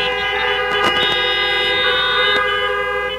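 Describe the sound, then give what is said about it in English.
Many car horns blare at once in a parking lot, each driver honking once in reply to a preacher, in a sustained, overlapping chorus that holds steady for several seconds with a few brief clicks and bumps mixed in. “Now, we need to understand, how many of you in this parking lot today have made a Jesus Christ? If you have, honk your horn one time.”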